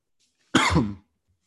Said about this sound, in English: This cough is bad today.